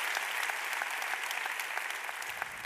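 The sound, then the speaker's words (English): An audience claps hands in praise to God for the leadership of Dr. Conway Edwards and his wife Jada, a dense, steady burst of many overlapping claps sustained evenly throughout with no voices standing out. “If you're grateful for their leadership, would you just give God a hand clap of praise for their leadership?”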